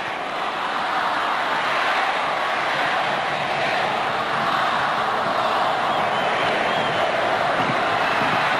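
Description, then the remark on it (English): A stadium crowd at a rugby league match between St George and Canterbury roars in a dense, steady wash of noise that holds loud and unbroken for the full length, with no single voice standing out, in the dying minutes with St George leading 27-12. “The crowd are about to take over.”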